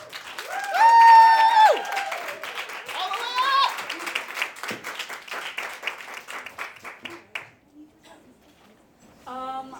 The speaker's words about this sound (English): I need a descriptive round of applause. What kind of round of applause do we want? Echoing. An echoing. That's nice. Ooh. An echoing round of applause